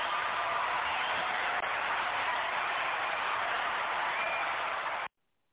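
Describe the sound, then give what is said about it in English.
A steady, dense roar of people cheering and applauding for a soul singer being introduced holds at an even, fairly loud level for about five seconds, then cuts off abruptly into silence. “See, we got people cheering for you now.”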